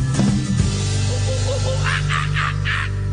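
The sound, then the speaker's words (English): Four quick, rhythmic monkey calls chatter in a burst near the end, fairly loud, over a steady low droning background with a brief thump at the start. “Is that a dog? No. Is that a monkey? Yes!”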